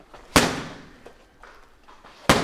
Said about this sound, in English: He gives me a few pointers, then I start punching his boxing mitts.